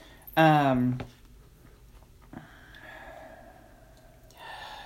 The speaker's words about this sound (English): Sorry. I'm like creepily breathing. I was like, I'll just take a deep breath.